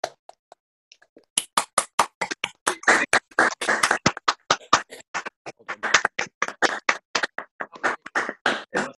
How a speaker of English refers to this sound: I'll just encourage everyone to briefly unmute themselves and applaud.